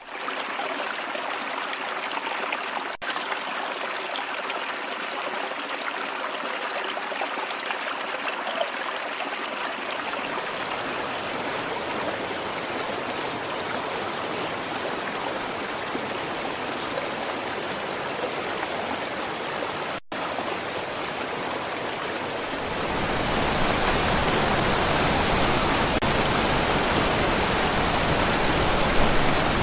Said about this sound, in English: we're going to show you a couple of clips of currents and rivers